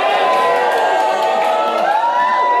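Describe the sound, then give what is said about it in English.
The audience at a live tabletop role-playing game show cheers and whoops continuously as a wisdom roll is made, a dense wash of many voices with high rising shouts and whistling yells layered over a steady, loud, applause-like roar. “Let's have it from the crowd, ladies and gentlemen.”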